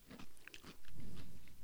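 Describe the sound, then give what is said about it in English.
A crisp, crunchy bite into a pickle during a pickle tasting, followed by a second of loud, wet chewing and crunching, with no talking. “It's time now for the pickle tasting.”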